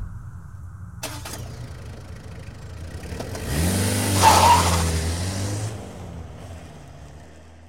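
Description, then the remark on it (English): A car engine catches with a sharp start, then revs up to a loud, rising roar that peaks and fades as the vehicle pulls away, leaving a low rumble behind. “Is this vehicle suitable for such a trip?”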